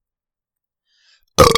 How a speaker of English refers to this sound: Yay. That was a nice burp.